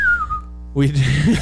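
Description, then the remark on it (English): A person whistles a short, slowly falling eerie note, then follows it with a low, wavering voiced moan, imitating a spooky sound effect. “My spooky what was that? Whistle.”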